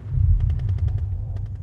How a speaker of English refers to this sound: here upon this trembling ground soaked through with blood, which is not mine but soon may be, if these confounded mortars do not cease their ceaseless pounding upon our heads like fists against a door demanding entrance into hell itself.